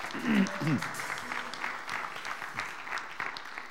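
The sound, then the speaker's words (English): A crowd claps in a steady, dense round of applause for those who helped out in the parade, with a few voices calling out and cheering at the start, then continuing clapping throughout. “How about a big round of applause for all those who helped out in the parade?”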